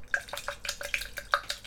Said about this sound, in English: Pouring hot water into my lavender and barberry.